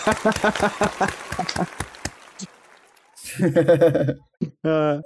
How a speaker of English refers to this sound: That's your little win. I'm going to give you a clap for that.